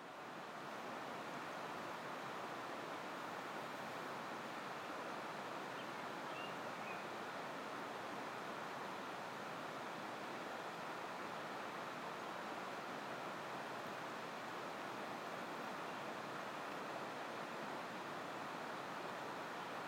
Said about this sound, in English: I think we're in the Pecos Wilderness on the other side of the mountains from Santa Fe. Is that the Pecos River? No. I don't know. I think this is just a small river that emerges up in the mountains.